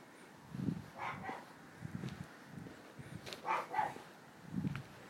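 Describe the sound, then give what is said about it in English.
A dog barks repeatedly in irregular bursts, the faint barks carrying across an otherwise quiet outdoor night with no one speaking. “If I was to say I could kill that dog, people might misunderstand.”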